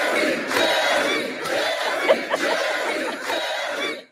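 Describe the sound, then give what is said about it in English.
A large crowd chants loudly and steadily, a dense roar of many voices with rhythmic swells that recur about once a second, ending abruptly after about four seconds. “Listen, if you're out gardening in the nude, they may start chanting this.”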